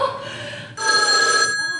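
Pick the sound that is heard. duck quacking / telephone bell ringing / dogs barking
telephone bell ringing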